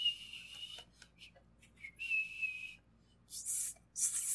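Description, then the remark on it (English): Someone tries a thin, high-pitched whistle: two wavering sustained notes with short chirps between, then breathy, airy rushes as the whistle falters, fairly quiet, with no talking. “can't whistle like him”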